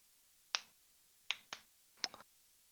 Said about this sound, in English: So, I thought you were just doing the New Day Rocks clap.